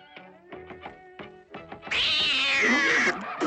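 A cat meows several times in short, bright calls, then lets out a louder, drawn-out yowl that lasts about a second before stopping. No one speaks.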